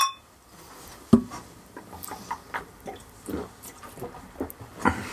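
A sharp clink of glasses in a toast with Schlossbein Odin Trunk beer near the start, followed by soft wet sipping and swallowing of the beer, and another brief bright ring near the end. Fairly quiet, with no talking.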